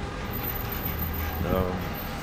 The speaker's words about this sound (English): And if you can't, can you see there's a subway line right up there?